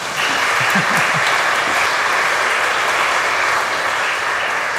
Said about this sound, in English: Aren't they good? You just got to give them a clap.